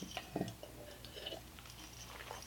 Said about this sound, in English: let me drink some water.